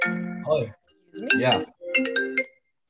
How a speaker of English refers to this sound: That just rang my computer. Not even my phone is muted and that just rang on my computer.